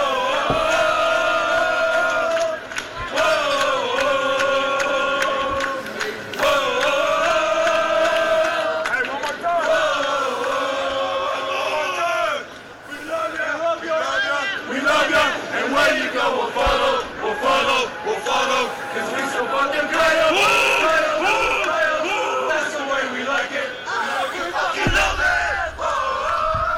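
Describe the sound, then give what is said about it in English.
A large crowd of AZ Rabbits fans chants loudly in unison at Gila River Arena, voices rising and falling in a steady, repeating rhythm that carries on for the whole stretch with no break, dense and forceful throughout. “For those of you wondering, that is 100% the AZ Rabbits, loud and in full force there at Gila River Arena last night, making the presence known.”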